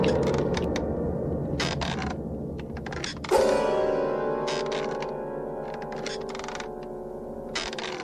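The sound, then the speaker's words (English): A wooden rocking chair in an attic creaks steadily back and forth as a woman sits rocking in it, with long groaning strains that swell louder midway, and no voices. “she's sitting in a rocking chair, just rocking back and forth.”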